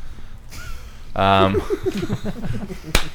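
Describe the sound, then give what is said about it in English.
A single sharp, loud hand clap rings out near the end, following a burst of excited voices and chatter. “Just gonna randomly clap throughout the episode.”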